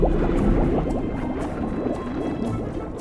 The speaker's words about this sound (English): Opening outer sea door.